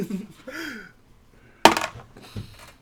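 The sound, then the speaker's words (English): A sharp clatter of dice being rerolled onto a hard table, followed by a quick rattle and a softer knock as they settle, with faint murmuring voices before it. “Well, some people's dice are having fun. Can you make above 6?”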